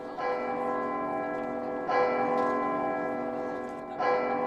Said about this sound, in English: High up in its belfry, its bell booms out across the city.